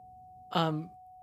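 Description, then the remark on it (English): A steady, unbroken phone keypad tone from a held-down pound key hums at low volume throughout, briefly joined by a short voiced sound from someone in the middle. “you're pressing the pound key.”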